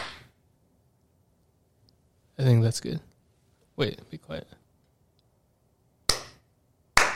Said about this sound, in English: Oh, let me clap right now for sound purposes, because I don't think I clapped at the beginning. Did I clap at the beginning? No, I don't think you did.